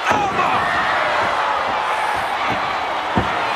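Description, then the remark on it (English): Wrestler Briscoe takes a big bump and slams onto the floor with a few heavy thuds, the loudest near the end, beneath a constant roar of arena crowd noise. “Jared took a bump. Didn't he? A big one. Holy smokes. Hits the floor.”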